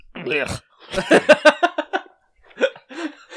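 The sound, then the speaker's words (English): A person vocally imitates a cat hacking up a hairball: a loud series of rhythmic gagging, retching bursts, pausing briefly before a few final heaves. “like do a hairball, like the like trying to like work it up.”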